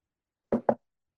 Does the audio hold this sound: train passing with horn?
no